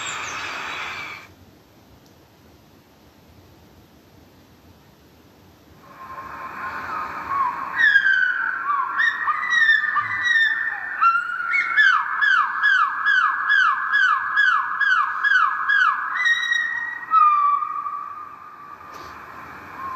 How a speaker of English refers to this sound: This is just some random bird songs on YouTube and then slowed down.